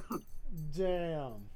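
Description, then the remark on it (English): A dog gives a brief yelp, then a drawn-out whimpering whine that rises and slowly falls in pitch, fairly loud, lasting about a second. “Bad dog.”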